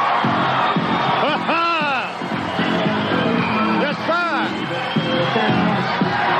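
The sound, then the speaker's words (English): A large capacity arena crowd, everyone standing, roars and cheers continuously for wrestler the Junkyard Dog as he makes his way to the ring. Scattered whoops and shouts rise above the dense wall of noise while a man speaks over the din. “And look at just what he does to this capacity crowd. Every individual here standing on their feet.”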